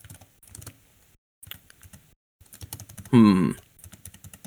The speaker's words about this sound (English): So I'm typing.